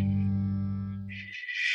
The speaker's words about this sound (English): Shh, that white noise, that static. Cut through it, baby.